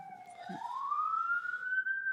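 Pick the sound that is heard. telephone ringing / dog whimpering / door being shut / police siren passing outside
police siren passing outside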